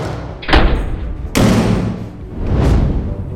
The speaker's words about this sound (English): But today, we're going to talk about one of the most important things you can do when escaping a fire. And that's close the door.